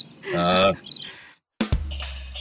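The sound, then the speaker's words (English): A short cricket chirping sound effect plays loudly from a small soundboard box with buttons, breaks off into a brief silence, then resumes with a buzzy low hum underneath. “Press the different things. Applause. Crickets.”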